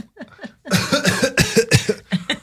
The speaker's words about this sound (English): Let me clear my throat.